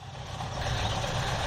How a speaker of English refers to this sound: Oh, here comes a car.